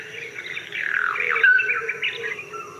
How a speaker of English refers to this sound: Everybody singing their songs. The birds and the trees, the plants, the insect.